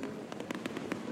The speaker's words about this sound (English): I was going to say, are there any other fireworks? Those ones. These were the best ones ever. Okay. Where they were skyrockets. This is before skyrockets were banned. You'd send them up and they'd explode,